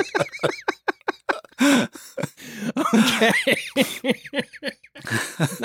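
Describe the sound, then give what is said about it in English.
A loud fit of wheezing coughs comes in rapid, uneven bursts with raspy, whistling breaths between them, mixed with a few laugh-like gasps over nearly six seconds. “Got the wheeze cough going on.”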